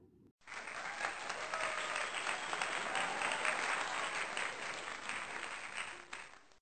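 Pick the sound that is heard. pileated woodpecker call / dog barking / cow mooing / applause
applause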